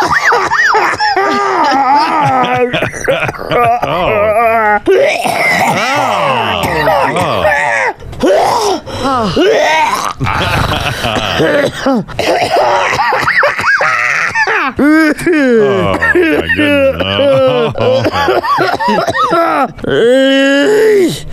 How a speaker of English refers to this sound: And she kept saying that the soda's going down the wrong pipe. That's exactly it. That's why she's coughing.